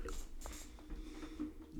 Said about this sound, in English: I'm passing out trying to slurp this thing up the straw. Oh, yeah. Okay. You're hardly getting any ice cream in your mouth. I just get the saliva that drips down. Yeah. It's that little air pocket. It's not going up. This is like definition thick.